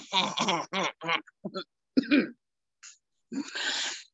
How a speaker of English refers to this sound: Hold on, let me clear my throat.